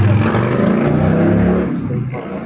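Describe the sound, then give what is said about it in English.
A heavy tractor engine revs loudly and steadily, its low rumbling drone rising and churning, then easing slightly toward the end with no voices present. “Chicken race with tractors.”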